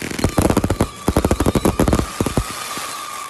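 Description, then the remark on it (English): A fireworks sound effect: a rapid, loud volley of firework pops and bangs crackles for about two seconds in quick succession, then gives way to a fading rumble. “Fireworks sound effects right there.”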